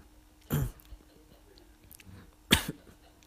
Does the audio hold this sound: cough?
yes